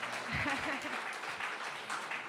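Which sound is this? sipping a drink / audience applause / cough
audience applause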